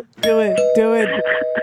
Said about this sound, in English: Can you go outside and ring the doorbell to your house? Can you just ring your own doorbell?